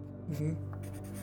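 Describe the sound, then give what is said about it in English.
Quick scratchy strokes of a pencil as a girl scribbles on paper, drawing angels, fairly soft, over a steady low hum with a faint murmur of voice in the background. “She starts scribbling and she's kind of looking at the paper.”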